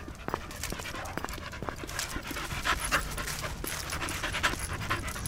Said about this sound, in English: Approaching the park, 6:30 in the evening. 20 big dogs.